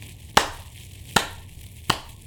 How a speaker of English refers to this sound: And then you hear just a couple of claps.